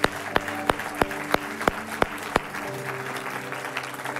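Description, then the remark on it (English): The Radiant Church audience applauds everyone who just prayed a prayer of salvation, in a dense wash of clapping, with sharp, evenly spaced claps standing out for the first couple of seconds, over sustained, soft organ-like tones. “And Radiant Church, can we give everyone who just prayed that prayer a huge round of applause?”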